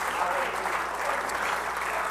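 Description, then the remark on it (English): An audience claps hands in praise of God in a dense, sustained wash of applause, steady and fairly loud throughout, with no distinct individual claps standing out. “Oh, come on, let's clap our hands to that holy God.”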